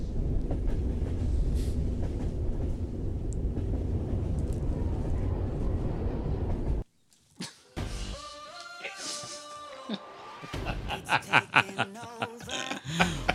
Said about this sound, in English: Come on a trek with us on the train to Christmas World Land.